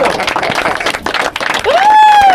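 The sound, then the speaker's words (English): An audience claps in a dense, steady burst of applause for the Bishop Diego football players, the CIF State Division III Double-A champions. Near the end a single high, sustained whoop rises over the clapping. “Hey, don't stop clapping! Don't stop clapping! Keep it going!”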